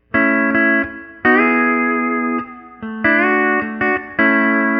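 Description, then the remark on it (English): A steel guitar with its effects loop bypassed plays sustained chords through a Fender Twin amp simulation with a little reverb, with a few gliding slides between notes, in a fairly clean amplified tone. Phrases are separated by brief pauses, and no one speaks. “So this is just the sound of the dry steel.”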